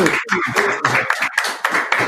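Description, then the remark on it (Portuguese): An audience claps in a steady patter of bright, sharp hand claps, fairly loud, with voices mixed into the applause for about two seconds. “Palmas.”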